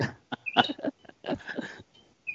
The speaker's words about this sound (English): Yeah, mute the birds. Hit the mute button.